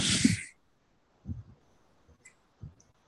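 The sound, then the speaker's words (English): A single sharp sneeze bursts out at the start, then fades into near silence broken only by a few soft, low thumps. “God bless you.”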